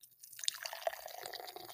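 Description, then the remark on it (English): Beer from Bonesaw Brewery, 8.8% alcohol by volume, pours steadily into a glass. It makes a continuous fizzy splashing with a few bright drips and gurgles, starting after a brief quiet moment and carrying on to the end. “Get my microphone over there while you pour it.”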